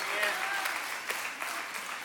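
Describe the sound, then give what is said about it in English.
A crowd in the building gives itself a round of applause, clapping steadily in a dense, continuous wash, with a few sharper claps and faint whoops or voices mixed in through the short burst. “Give yourself a round of applause, all of y'all in the building.”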